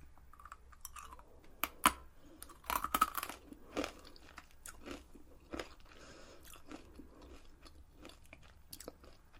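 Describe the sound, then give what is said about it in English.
Crisp, irregular crunching of tiny, pretzel-bit-like, spicy chipstick snacks that smell strongly of roast chicken, being chewed, with sharp bursts of bites over steady mastication and no talking. “These look more like little like pretzel bits. But they smell so strong of like roast chicken.”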